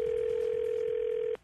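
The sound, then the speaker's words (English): A steady, loud telephone dial tone as a call is placed to a house holds one unbroken pitch for over a second, then cuts off abruptly with a faint click, leaving quiet line hiss. “And then Mike, played by Scary, calls the house.”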